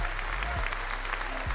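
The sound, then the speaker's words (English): A burst of crowd applause sound effect, played for a mock Golden Nug Award given to Mexican President Andrés Manuel López Obrador, dense and steady clapping from many hands at a constant moderate loudness, with no voices over it. “Hit him with that applause.”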